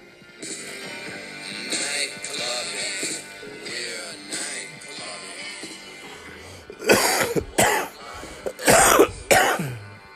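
Drawn-out, raspy throat clearing and hacking, then a run of four or five loud, harsh coughs in quick succession, with no other sounds around them.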